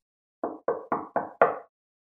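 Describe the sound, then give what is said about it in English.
Five firm, evenly spaced knocks on a wooden front door of a house by a Highway Patrol officer coming to deliver news of a fatal crash, clear, with the final knock landing hardest. No voices, and silence follows. “As a Highway Patrol officer, I promise you, one of the worst parts of my job is having to come to that house, knock on that door, and deliver the worst case scenario news.”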